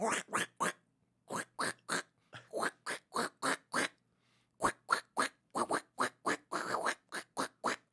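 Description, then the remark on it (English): A voice imitates a duck, sounding like Donald Duck, firing off rapid runs of raspy, quack-like syllables in short bursts with brief pauses between them, fairly loud. “But it sounded like Donald Duck.”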